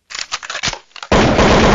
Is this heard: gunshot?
yes